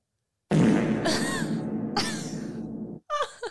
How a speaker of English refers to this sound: But I installed a fart button.